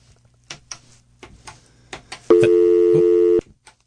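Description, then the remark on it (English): A series of sharp clicks and ticks on a radio show's call-in phone line, then a single loud, steady electronic ring tone lasting about a second before cutting off abruptly. “Somebody didn't hang on long enough, or Peck Bell cut him off for too many rings.”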